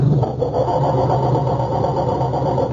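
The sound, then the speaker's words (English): A car engine struggles and labors as it tries to start but will not, because the coil wire to the distributor has been removed; a steady, fairly loud mechanical grinding hum that never catches, with no voices present. “It sounds like our culprits are having trouble starting Dennis's car.”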